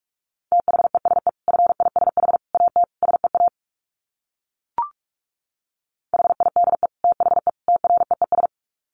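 Fast Morse code at 45 words per minute, sent as a single steady mid-pitched tone. It is keyed in rapid short pulses grouped into words, with a pause broken by one brief blip before the code resumes.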